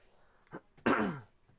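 throat clearing

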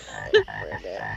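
frog croaking sound effect

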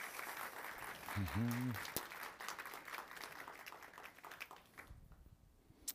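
round of applause

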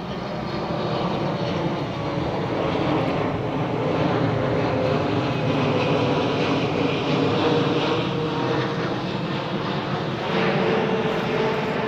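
airplane flying overhead

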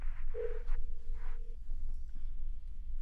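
telephone ringing on speakerphone

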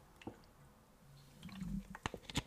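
drinking water

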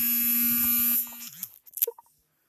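mobile phone vibrating

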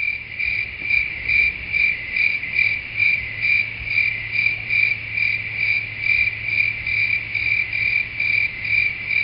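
crickets chirping

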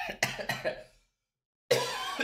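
coughing

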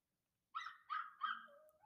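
dog barking

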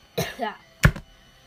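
coughing

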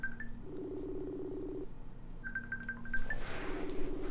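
phone dialing a number

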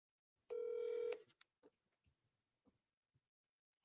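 faceTime call ringing tone

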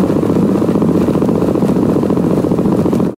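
black-capped chickadee heartbeat

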